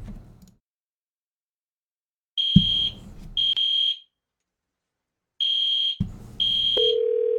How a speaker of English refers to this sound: All right, well, let's call this next one with this alarm going.